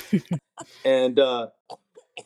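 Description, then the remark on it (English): A person mimics a cough: two quick, sharp bursts followed by a longer, voiced throat-clearing sound, then a few faint breathy catches. “and he did like that. He coughed when he saw it.”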